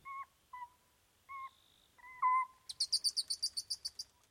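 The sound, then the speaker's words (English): A Cyprus copse owl pair calls back and forth while mating at night: several short, wavering hoots, then a quick run of about a dozen high, squeaky chirps in steady rhythm, with no voices. “This is the rarely heard sound of a copse owl pair mating.”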